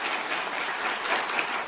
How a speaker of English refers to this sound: The people who are applauding are sitting behind Mark Zuckerberg of Meta Facebook. These are people who are family of those who have been exploited and hurt because of connections online.